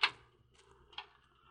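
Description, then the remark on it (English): A door to a hospital ward is opened: a sharp latch click, a faint shuffling movement, then a second, softer click about a second later, with no voices. “You open that door, Mr.”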